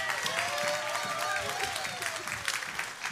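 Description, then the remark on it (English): An audience claps steadily for about three seconds for a speaker being introduced, a dense crackle of many hands, with a few high voices whooping and calling out over the applause. “Give her a big applause.”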